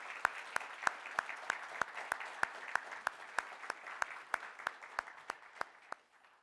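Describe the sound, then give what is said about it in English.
A crowd applauds steadily for people standing who have served or are serving in the military, with one sharp clapper standing out in a regular beat above the wash of clapping, which tapers off and stops near the end. “Let's give them a round of applause, please.”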